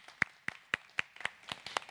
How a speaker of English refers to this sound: Can we clap for them as they go to their class?